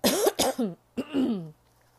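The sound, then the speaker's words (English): A few loud coughs in quick succession, then a short pause and one longer, rasping cough with a throaty edge, like clearing a scratchy throat. No speech. “I got to cough a little bit.”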